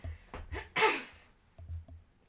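A person clears their throat: a couple of short rough huffs, one louder raspy burst, then a few softer low grunts trailing off, with no speech.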